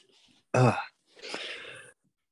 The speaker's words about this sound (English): excuse me. I was kind of having a cough attack before.